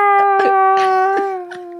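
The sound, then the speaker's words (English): A voice reading a story aloud acts out a loud, drawn-out scream, holding one steady, piercing pitch for nearly two seconds before it sags slightly lower. No other talk is heard. “And the scream exploded from her throat.”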